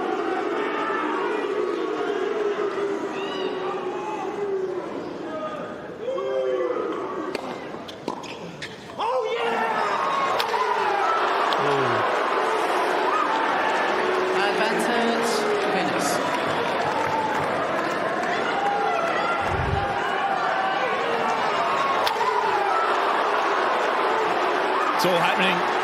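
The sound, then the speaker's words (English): An unruly tennis crowd at a match leading into the finals, at set point for Fuets and Venus, roars and jeers continuously, a dense wash of shouting, whistles and overlapping voices with a brief lull midway before the din surges back, with scattered sharp claps. “There were some unsavory moments both within the game preceding it and within the crowd that was watching it.”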